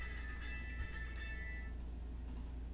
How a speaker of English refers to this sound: We have to realize all of these things... sorry, I was getting a phone call.